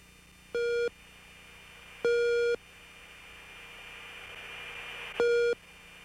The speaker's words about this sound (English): All right, so we got some tones there. What are those? Those are raw gear, RWR, radar warning receiver tones. It's very interesting. I was in aircraft 410 that day. Aircraft 410 had some faulty RWR receiver or probes or sensors,